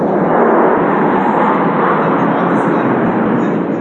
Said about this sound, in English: when a warplane buzzed the sky. And it's very loud and very scary, and here it is.